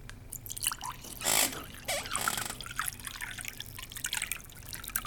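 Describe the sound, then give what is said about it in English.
Water from a glass splashes out in a quick pour over a person, followed by scattered drips and trickles, with a brief louder gush near the start and soft dribbling continuing to the end, soaking a paper. “Oh, I meant to drink, not wear. Brilliant move. Now the paper is soaking wet.”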